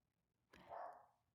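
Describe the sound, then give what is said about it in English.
A single sharp dog bark rings out, rising abruptly and fading over about a second, with no talking around it. “And of course, now is the time when my dogs are going to decide.”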